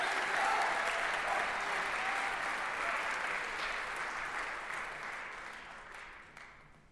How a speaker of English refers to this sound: One more time, congratulate all of these winners. Give them a nice round of applause.